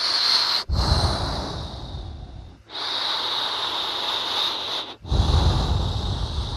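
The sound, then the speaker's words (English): Heavy, slow breathing, with long noisy inhales and exhales that carry a snorting, sniffing edge. About three drawn-out breaths, each separated by a brief pause, and no talking. “Feel me breathing hard. I'm breathing hard and slow.”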